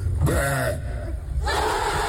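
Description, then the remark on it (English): At a contest for the loudest burp, a loud crowd roars and shouts wildly, with one strong yell rising above the din before a broad wave of cheering swells up and carries on to the end. “And the crowd go wild.”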